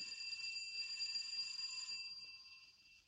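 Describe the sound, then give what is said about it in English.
A doorbell at a door on Durant Street rings with a steady, bright metallic buzz for about two seconds, then fades away, heard on its own. “I'll try the bell.”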